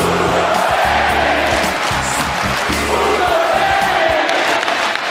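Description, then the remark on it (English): An audience cheering sound effect: a large audience roars and cheers in a dense, continuous wash of voices, with rising shouts and whoops riding over a steady loud crowd noise for the whole stretch. “Are you almost done with the audience? It's getting really bad.”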